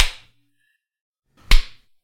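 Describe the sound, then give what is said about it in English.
Two light slaps, the first fading at the very start and a second sharp smack about a second and a half later, both fairly soft, with near silence between them. “Your slaps are so weak.”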